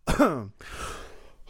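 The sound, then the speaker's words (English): Someone clears their throat with a short voiced rasp, then a breathy, noisy exhale trails off. No talking, just the one throat clear. “I feel like fucking Jim Cornette there clearing my throat.”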